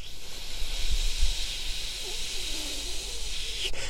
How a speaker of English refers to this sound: Oh, God, it's hot in this car, but I'm doing it for this stupid fucking podcast, because if I have the AC on in the background, all you're going to hear is...